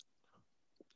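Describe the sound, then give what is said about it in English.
Quiet crunching of someone chewing Trix cereal: a few soft mouth sounds, then a louder crisp crunch at the end, with no talking. “Keep talking. I'm still chewing.”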